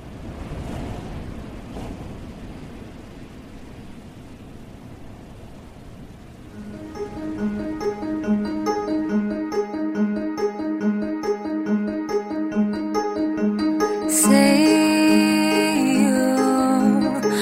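A pop song intro opens with a soft rushing, surf-like wash, then a bright, rhythmic instrumental groove of repeating keyboard-like chords comes in and builds louder, with no singing yet.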